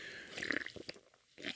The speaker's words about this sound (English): Let me sip some seltzer here. Hold on.